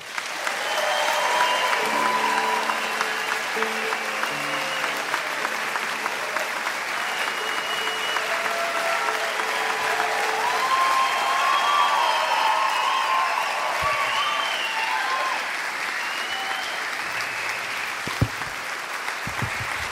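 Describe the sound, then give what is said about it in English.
The audience at Mountain Stage in Bristol, Tennessee, claps steadily and enthusiastically for about twenty seconds to welcome back a performer, a dense, even wash of applause that holds at a loud level throughout, with a few brief tonal sounds in the background early on. “I'll try to do the best I can after an applause like that.”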